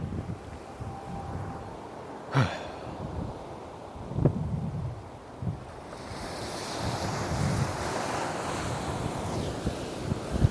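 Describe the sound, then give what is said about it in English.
Ocean waves roll and break on a beach at Santa Monica in the morning in a steady wash of surf, with gusts of wind buffeting the microphone and a few sharper crashes standing out. No one speaks. “I just had to let y'all hear the sound of the ocean real quick.”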